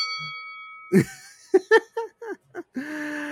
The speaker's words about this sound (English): Oh man. Well, with that bell, it's time for us to move on to round two. Deathmatch in the ring.